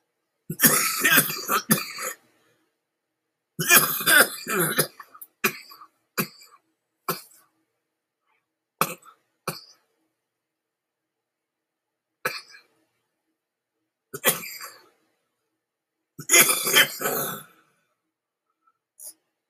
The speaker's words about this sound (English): Good weed. That's why I'm coughing. Took too big of a hit, but boy, it's like you feel it instantaneously.